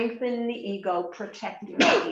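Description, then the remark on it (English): A man speaks steadily, then a single sharp, breathy sneeze bursts out at the very end, loud and noisy, cutting off the talk. “Bless you.”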